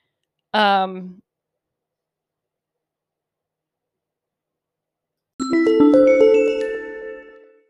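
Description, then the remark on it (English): A brief tonal blip, then after several seconds of silence a bright little chime of several layered, sustained pitches rings out for about two seconds before fading. “All right, little chime sound.”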